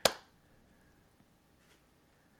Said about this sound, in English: Maybe there is a delay. How far? Wait, but how far are we on delay? I'm gonna clap.